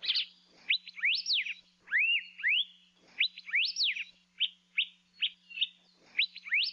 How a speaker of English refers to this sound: Elepaio seem more inquisitive and curious than other native forest birds and will often follow hikers as they walk through their territories in the forest. Like many other Hawaiian birds, elepaio are named after the sound they make.